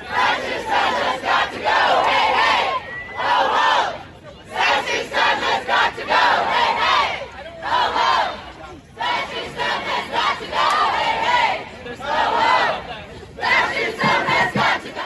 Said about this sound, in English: This is what it's supposed to look like. A bunch of people screaming, hey, hey, ho, ho.